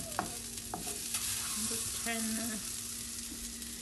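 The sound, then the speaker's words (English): Steady sizzling of about 20 mealworms frying in a hot frying pan, popping and turning darker, a dense crackling hiss with a few sharp clicks and scraping stir sounds, and no one speaking. “They're sizzling away.”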